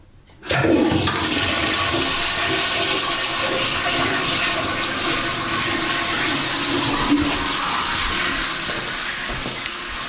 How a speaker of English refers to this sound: And now you will hear the sound of William Allen White's toilet being flushed.